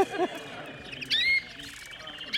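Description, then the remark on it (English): A canary sings a bright, high-pitched warbling song of rapid trills and quick chirps, with a louder burst in the middle, against a faint background hum. “That's a fault, but it has freedom, which means it sings a lot. It has a lot of variety.”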